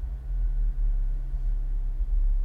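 A deep, steady low rumble of someone's car, droning continuously with slight swells in loudness and no voices.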